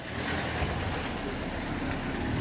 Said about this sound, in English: In the East Jerusalem neighborhood of Shayah Monday, pedestrians slip into entryways to allow cars to pass in the narrow streets.